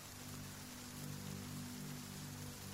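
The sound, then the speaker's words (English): Steady rain patters down across the whole clip, a dense, even hiss of countless drops hitting the ground, constant without any voices. “Hurriedly down they went, rolling over each other pell-mell, till with a patter and clatter and spatter they touched the ground. And all the people cried, "It's raining!"”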